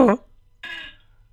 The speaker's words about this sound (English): That's just a fart.